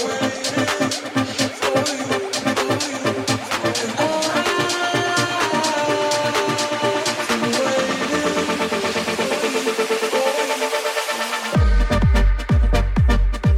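A song from 1983 plays on its own with no talking: layered melodic notes over a steady beat, then an abrupt switch near the end to a louder, punchier section with heavy low thumps.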